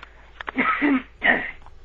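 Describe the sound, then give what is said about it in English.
A person clears their throat in two rough, rasping bursts, the first longer and the second shorter after a brief pause. It is moderately loud, with no talking. “excuse me, I'm going to clear my throat.”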